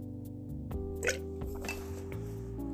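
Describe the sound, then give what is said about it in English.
Someone drinking water from a glass: a couple of soft glassy clinks and a brief gulp-like sound over a steady low hum, with no talking. “Sorry, I had to take a drink of water.”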